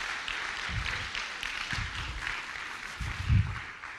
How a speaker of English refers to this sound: Come on, if you appreciate that, give the Lord a good round of applause.